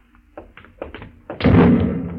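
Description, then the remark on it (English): A distant explosion from the ship goes off after a few faint knocks and thuds, a sudden broad booming blast that rumbles on and slowly fades away. “No, that was an explosion.”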